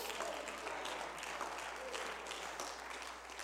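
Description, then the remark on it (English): An audience claps their hands unto the Lord during a pastor's sermon, in a steady, dense wash of applause that holds at a fairly even loudness for several seconds, easing off slightly near the end. “Somebody ought to clap your hands unto the Lord.”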